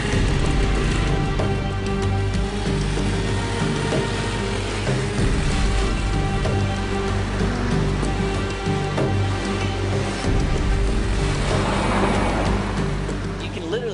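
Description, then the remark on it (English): Dense, congested city street traffic, with dust in the air after an earthquake, fills the scene with a steady, loud roar of engines and road noise, continuous throughout with occasional horn-like tones and muffled voices mixed in. “it's definitely the best way of getting around the city. Because it gets so congested, so choked up with traffic.”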